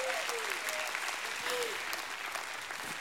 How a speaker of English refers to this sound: Give him another hand clap and a shout of praise.